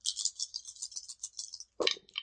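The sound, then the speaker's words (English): Dice rolled in a tabletop role-playing game rattle in a quick, steady shake for nearly two seconds, then a louder clatter and one more short clack as they settle. No one speaks. “Okay, so I got a -1 on the dice.”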